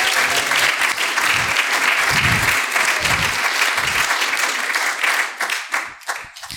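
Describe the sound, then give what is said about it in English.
An audience claps their hands unto the Lord in a dense, sustained wave of applause that holds steady, then thins into scattered claps and fades near the end. “Come on, clap your hands unto the Lord today.”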